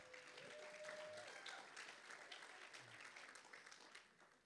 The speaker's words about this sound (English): Let's give Maddie a hand clap.